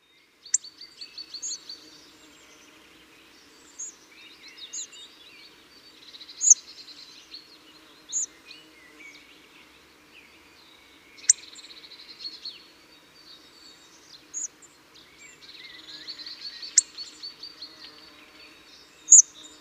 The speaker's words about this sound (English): The hawfinch song is soft, halting and unmusical. So quiet and obtrusive, this lack of a distinctive song is partly what makes it so difficult to find hawfinches in their natural woodland habitat.